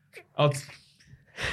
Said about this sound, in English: That was the quietest sneeze.